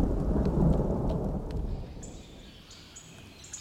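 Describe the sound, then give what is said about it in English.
A deep rumble of thunder from a massive storm rolls and slowly fades over steady rain, with faint bird chirps surfacing near the end. No one speaks. “Unfortunately, at this point, a massive storm hit”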